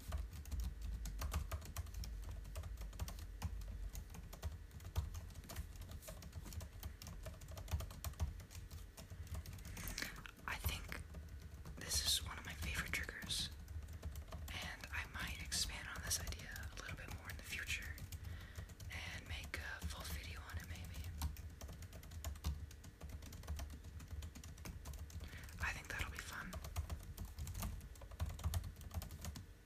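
Soft typing on a standard Apple keyboard: quick runs of light, flat key taps in bursts with short pauses, quiet overall against a faint hiss, no one speaking.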